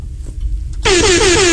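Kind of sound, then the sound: sound effect, air horn sound effect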